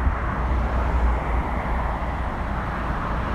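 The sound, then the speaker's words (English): A steady, low roar of a whole bunch of airplanes passing overhead, a broad rumbling drone that holds at an even, moderate loudness throughout with no voices. “There's a whole bunch of planes going over the top of me.”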